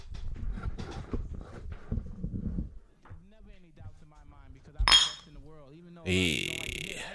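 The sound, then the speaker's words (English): Glasses clink together in a toast among a group of men: a sharp clink, then a brighter, ringing clash near the end, following a stretch of voices chatting. “Hey, fellas, clink it on up, man.”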